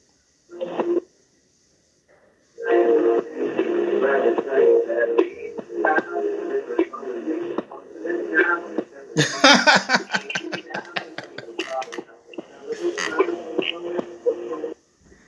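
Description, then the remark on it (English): Tinny, band-limited phone audio cuts out after a brief burst, returns, then stutters and crackles with rapid glitchy dropouts before carrying on, moderately loud, as the phone switches on and off Bluetooth. “Sorry, my phone does this thing where it goes on the Bluetooth and off the Bluetooth.”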